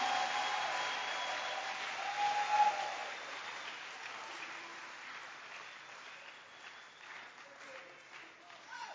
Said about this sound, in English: Why don't you clap your hands for Jesus, somebody?